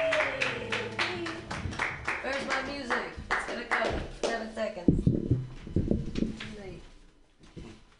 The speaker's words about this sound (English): So, yay, we're all keep being awesome and helpful and listening for your next comedian. Clap your hands in a wild slappy-like motion